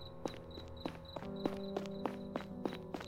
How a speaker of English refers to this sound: Is someone following me? Why am I hearing another set of footsteps? No one's there, but it's hard to tell because the street lamps on this street don't work.